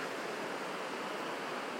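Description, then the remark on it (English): Fast-moving river water rushes steadily from about 100 feet below a trail, a dense, continuous hiss and roar with no pauses, filling the scene evenly without any voices. “as you crest that part of the trail and go around the corner, you can hear another aspect of the river. It's a little farther below, but the water seems to be moving faster.”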